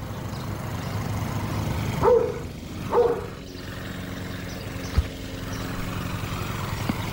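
A dog barks twice, about a second apart, over a steady low rumble like idling traffic or an engine. No one speaks.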